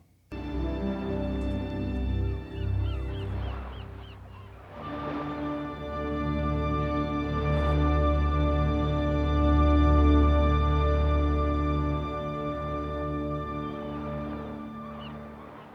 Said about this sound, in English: So what we have there is we have the same nautical aquatic bird sounds, seagulls sounds that open up the movie, but we heard it from the shark's point of view underneath the water.